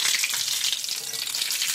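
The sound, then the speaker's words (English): Fritters sizzle steadily in hot frying oil, a continuous crackling hiss with dense bright spatter and no pauses, heard alone without any voices. “Oh, it's sizzling good, isn't it?”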